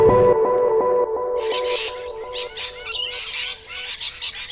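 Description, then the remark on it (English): A loud, dense chorus of pigeons squawking and chattering fills a pigeon enclosure, the calls overlapping continuously over a steady low hum, with no one speaking. “Okay, and here we are by the pigeon enclosure. As you can hear, their squawks are quite deafening.”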